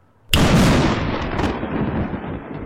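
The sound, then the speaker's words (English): A single sharp thunderclap, set off by a snap of the fingers, bursts in after a brief silence, loud, then rolls into a heavy rumbling boom that slowly fades but keeps sounding to the end. “I could have just snapped my fingers and... He did just that, and there was a thunderclap.”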